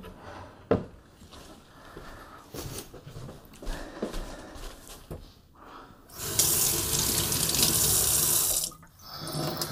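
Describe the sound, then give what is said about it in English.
A faucet is turned on full and water gushes steadily into a sink for hand washing for a few seconds, preceded by soft clinks and handling noises, then shuts off abruptly. “Gotta wash the hands.”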